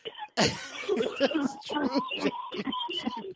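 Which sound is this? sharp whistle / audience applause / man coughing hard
man coughing hard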